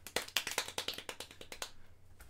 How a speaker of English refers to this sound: Golf clap.